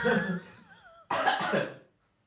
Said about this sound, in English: Do you need to clear your throat? I don't think so.